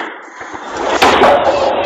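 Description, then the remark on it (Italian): A bowling ball rumbles down the lane on the second throw of the frame, aimed at four remaining pins (1, 2, 4, 7), then a sudden bright crash hits about halfway through, followed by a lingering clattering wash of noise. “You missed all the pins on this throw, leaving 4 pins standing.”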